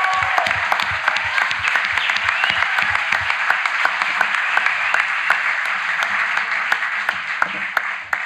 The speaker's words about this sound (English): So let's give one more applause for Doc Holliday. Thank you all.